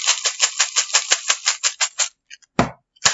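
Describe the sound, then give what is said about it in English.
Peanut butter M&M's being eaten: a quick, steady run of crisp crunching bursts for about two seconds, then a pause and a couple of louder rustling crunches, with no talking. “It's peanut butter M&M's.”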